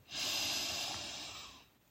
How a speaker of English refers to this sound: Let's end this guided visualization by taking one more deep breath and practicing our bubblegum breathing to boost our confidence and gratitude. Put your hands on either side of your mouth and inhale.